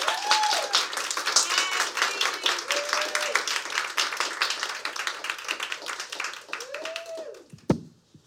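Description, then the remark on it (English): A room full of people at the launch of the Girls on Key Press anthology Shoot the Breeze, recorded 1 February 2023, claps steadily for several seconds to welcome a performer, dense and lively, with a few rising whoops and cheers over the top before the applause thins out near the end. “So let's give her a massive round of applause.”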